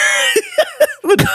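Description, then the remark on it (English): A quick run of four or five harsh coughs, each short burst following the last in an uneven rhythm, with a rough, raspy quality and no talking in between. “My cough is just.”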